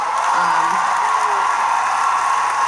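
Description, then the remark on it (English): Steady, dense applause from an audience, a continuous wash of many hands clapping at a constant loud level, with a faint cheer or whoop briefly audible early on. “Men, you can clap too.”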